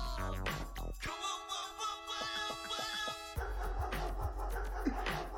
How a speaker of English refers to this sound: They put barks on a beat. What? They put barks on a beat.